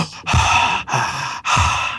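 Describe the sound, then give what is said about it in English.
Three long, loud, exaggerated breaths blown right into the microphone, each a broad airy rush separated by brief pauses, with no talking. “You know, cut that heavy breathing section out or you know.”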